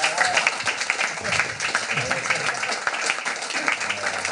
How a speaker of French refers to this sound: Ben, je pense que ça mérite un bel applaudissement quand même.